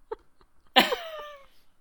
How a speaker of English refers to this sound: Okay. Well, dry cough then.